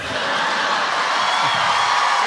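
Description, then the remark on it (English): A live audience cheers loudly after a joke, a dense, steady roar of many voices with whoops mixed in, holding at full strength for a couple of seconds without fading. “They're cheering.”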